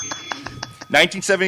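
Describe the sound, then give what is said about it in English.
A small bell dings rapidly about five times in a bright, ringing burst, its tone lingering, before a voice starts talking over the fading ring. “Where's my bell? I got the bell.”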